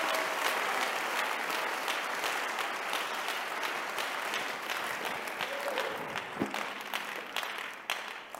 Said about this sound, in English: Give the Lord a clap of it. Put your hands together for Jesus.